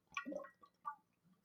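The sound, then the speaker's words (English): Someone takes a drink of water, making a few short, wet gulping and slurping sounds in quick bursts, with no talking. “Got to take a drink of water, so enjoy that production right there, folks, because I'm not editing that out.”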